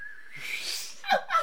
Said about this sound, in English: I still can't whistle.